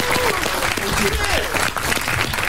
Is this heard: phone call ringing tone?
no